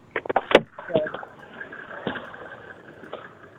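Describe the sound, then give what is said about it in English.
Someone climbing out of a car: a quick run of car door latch clicks and handle rattles, then a few scattered thumps and shuffling movements over a faint background hum. “All right, now I'm stepping out of the car.”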